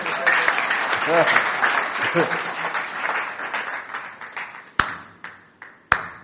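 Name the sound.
audience clapping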